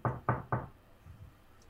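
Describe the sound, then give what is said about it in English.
Three firm knocks on a door, expected to be Zarasha's, in quick, even succession, loud, followed by quiet with faint low rumbles. “Are you knocking, or are you just going for the door? I'm gonna knock.”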